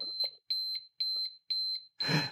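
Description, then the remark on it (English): A timer beeps in a steady, rapid pattern, about two high-pitched electronic beeps per second, loud, with a burst of rustling noise under the final beep. “You can keep the beep on if you want.”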